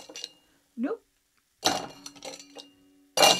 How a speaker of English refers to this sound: And I'm also going to add some of the ice in with the bevy. Oops, oh, making a mess.